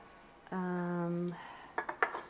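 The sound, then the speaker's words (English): A steady low humming tone lasts under a second, then three quick clinks of dishes and cutlery follow in a loose rhythm as a dishwasher is unloaded and reloaded. No one speaks. “So okay, I have the dishwasher unloaded and reloaded, and I have the bottles are cleaning.”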